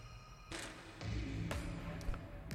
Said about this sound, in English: footsteps down the hall, you also hear footsteps going down the tunnel you came in.